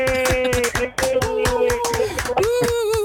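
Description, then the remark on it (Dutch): Applause with rapid, dense clapping that stays loud and steady throughout, accompanied by sustained tonal sounds like cheering or music underneath. “Kijk, een applaus. Hoor je geen applaus? Een goed applaus.”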